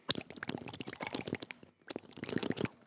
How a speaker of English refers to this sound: I'm chewing on ice because I'm real thirsty.